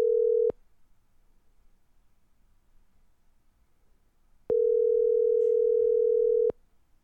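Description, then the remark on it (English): A telephone ringback tone sounds on a call placed to add a person back into a recorded conversation: a steady electronic hum cuts off, then after a few seconds of quiet a second two-second tone plays at the same clear, moderate level. No one speaks. “And it's ringing on the episode.”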